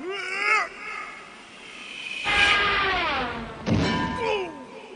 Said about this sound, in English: Say, have you got my anvil? Sure do. Can you toss it over? Okay, here it comes.